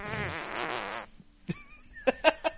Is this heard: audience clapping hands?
no